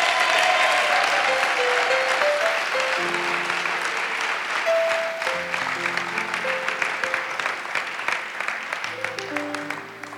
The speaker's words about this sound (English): clap one more time for me.